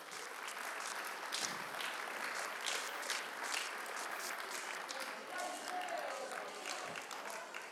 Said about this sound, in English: Will you come and join me? Give them a big hand as they come on up.